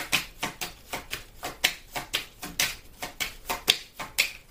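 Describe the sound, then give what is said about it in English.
A deck of tarot cards being shuffled by hand during a tarot reading, a quick, steady run of crisp papery slaps and flicks, about three or four per second, with no talking. “That really flew off.”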